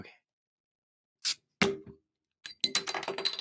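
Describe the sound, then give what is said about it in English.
An iced coffee bottle being opened: a brief hiss, then a sharp cracking snap of the cap, followed by a quick run of clattering, clinking rattles. “I was going to open it so you can hear it.”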